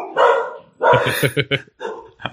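A dog barks several times in quick, fairly loud bursts, with short yippy barks and a brief whine between them.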